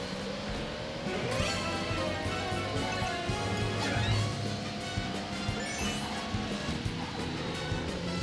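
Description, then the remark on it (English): Busy video game audio: a kart crashes amid bright electronic music, with sweeping synthetic tones and clattering effects running steadily at a loud level, no voices present. “Whoa, crashing here.”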